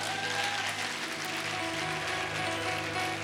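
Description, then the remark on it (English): A church audience claps for Jesus together in a dense, steady wash of many hands, holding an even loudness throughout, with faint sustained musical tones humming underneath. “Let us clap for Jesus.”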